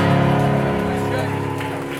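An audience at a church service claps for the Lord, steadily, in a dense, continuous patter of many hands. The clapping is loud, with sustained musical tones ringing underneath.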